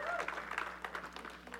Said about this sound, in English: Somebody give Him a hand clap of praise in this house.